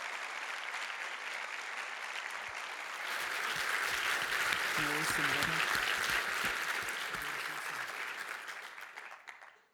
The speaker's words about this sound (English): So firstly, I just wanted to start by thanking all of the speakers, and I'd just like to for us all to give them a big round of applause to show our gratitude.